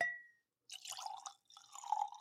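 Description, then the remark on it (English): Whiskey pours from a nearly empty bottle in two short, gurgling bursts after a brief glassy clink, fairly quiet, with no voices. “No, I can get a pour.”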